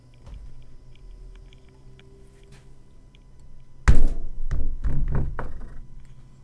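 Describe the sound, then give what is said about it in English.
A door is opened, then pulled shut with a solid thunk, followed by a few short rattling knocks as it settles. The low steady hum of a ceiling fan runs underneath throughout. “Open the door, close it behind you.”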